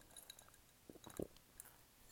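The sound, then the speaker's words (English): Soft, wet chewing of a soggy sandwich, a few squishy bites clustered together in a short burst, then quiet. No one speaks. “That's what I'm going to eat. I'm going to enjoy it because I like when my sandwich get nice and soggy.”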